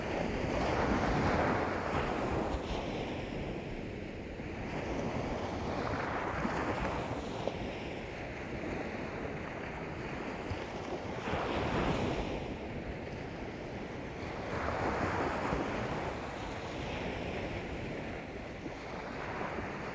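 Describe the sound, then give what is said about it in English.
Ocean waves roll onto a sandy beach at sunrise in a steady rhythm, each surge swelling and washing back about every four seconds, full under a constant breezy hiss. “Let the steadiness of the waves the softness of the breeze and the warmth of the sun”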